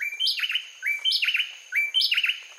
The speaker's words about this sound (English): On a winter morning in Costa Rica, a pair of bay wrens sings a brisk duet just before sunrise. Though the bay wrens stay well hidden in the underbrush, they have all the decibels they need to make themselves known.